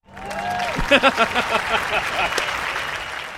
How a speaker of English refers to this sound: All of those claps were Garrett Wilson. That was him and his family and his friends. He can clap so fast.